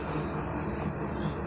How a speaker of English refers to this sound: You hear the train behind me?